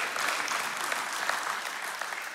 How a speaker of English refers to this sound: I'm glad you're clapping.